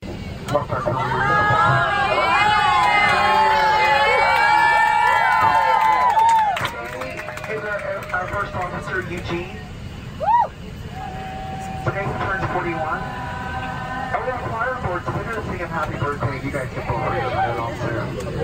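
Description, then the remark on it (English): A youth traveling choir sings together in loud, sustained harmony for several seconds, serenading a passenger for his birthday at the front of the airplane, then quieter voices carry on over a steady low engine rumble inside the airplane cabin. “But I'm going to play the video so you can hear the youth traveling choir as they serenaded”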